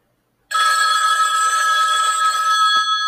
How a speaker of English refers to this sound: But later that same day, Damien is at home bagging all his weed, and his phone rings.